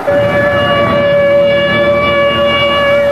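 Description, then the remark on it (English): A loud, sustained tornado warning siren, sounded after a tornado was sighted moving east towards Dallas, holds a steady tone with bright harmonics stacked above it. It does not stop for the whole stretch, over a low rumbling background, and no one speaks. “3:45, tornado sighted, moving east towards Dallas. The warning goes out.”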